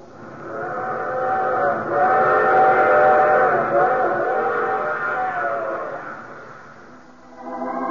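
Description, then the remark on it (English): A train whistle blows a long, loud, sustained chord for several seconds over the rumble of a running train, then fades as the clatter of the wheels continues alone. “I take this same train each week at this time.”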